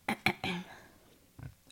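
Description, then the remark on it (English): A fairly quiet burp: a couple of quick throaty catches, then a longer low rumbling belch, followed by a brief soft grunt after a pause. No one speaks. “Sorry, I don't ever burp. That needed to happen.”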